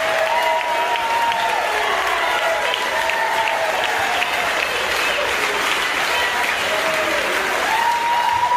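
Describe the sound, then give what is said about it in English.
A large crowd applauds loudly and steadily for several seconds after an announcement that articles of impeachment have been filed against Joe Biden. Dense clapping mixes with cheering voices and a few high whistles rising above the din. “And the crowd goes wild.”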